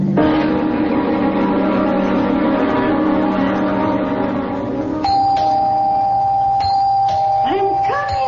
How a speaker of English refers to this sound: I'm coming. Don't have to rip the bell off the door, young man.